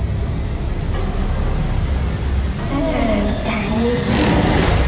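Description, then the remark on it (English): A bus rumbles steadily along a road far to the north, its low engine drone and road noise continuous, with indistinct voices speaking over it in the second half. “Not many ride the bus this far north.”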